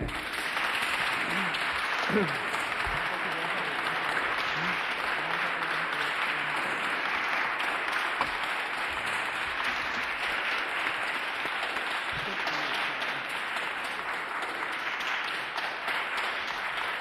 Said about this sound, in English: Okay, and enough applause. The point's been made.